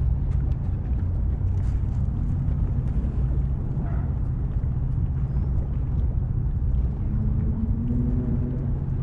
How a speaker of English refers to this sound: Bubbling up from the East River. It seems like a sign that like a giant space alien is about to emerge from the East River and destroy the city.